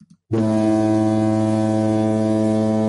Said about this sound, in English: I'll do the foghorn of desperation.